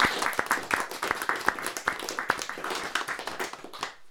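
An audience applauds the guests at the end of a panel discussion, many hands clapping in a dense, steady patter of sharp claps that holds for a few seconds before fading out at the end.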